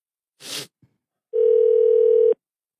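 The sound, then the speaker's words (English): A short rustling clatter and a faint click, then a steady, loud telephone dial tone hums for about a second before cutting off abruptly, as a phone call is placed during a live radio broadcast. No one speaks. “I'm used to Gary typing in phone numbers.”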